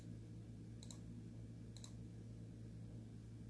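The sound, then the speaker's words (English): Two soft, isolated keyboard clicks about a second apart, quiet, over a steady low electrical hum with no talking, as someone types a search for JetBlue stock on a computer keyboard. “I'm just going to Google and I'm just typing in JetBlue stock”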